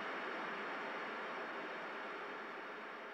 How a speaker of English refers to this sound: The signal arrives through TV receivers around the globe. Only all anyone can see is static.